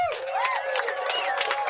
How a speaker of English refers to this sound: give yourselves a round of applause, because this is about us